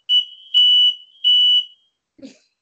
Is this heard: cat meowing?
no